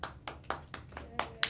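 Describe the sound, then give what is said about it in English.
Hands clap in a quick, steady rhythm on the show BMK, Business Minds Kids, applauding work done with the CARE Organization: about seven sharp claps in a row, each one crisp and fairly loud, with no talking over them. “Well, we just want to clap it up for the amazing work that you do with the CARE Organization.”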